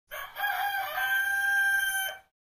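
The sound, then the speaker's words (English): A single loud rooster crow, a drawn-out cock-a-doodle-doo lasting about two seconds, clear with no talking over it, played as the chicken clock sound of a talking clock. “And chicken clock.”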